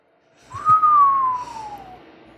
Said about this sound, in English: I whistle at the room. What does that do? Does that give you light? No, I'm just impressed.